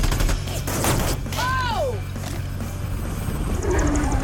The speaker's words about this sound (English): Oh! I thought you said small arms weren't a problem. Does that look like small arms to you? Huh? That's a cannon.